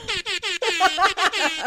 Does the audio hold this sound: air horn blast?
yes